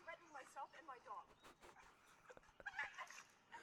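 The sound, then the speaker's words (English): A cocker spaniel yelps and whimpers in a rapid string of high, strained cries while being held and choked by its collar in the Ramble in Central Park, while voices talk loudly over it. “Dog yelping because she's choking it.”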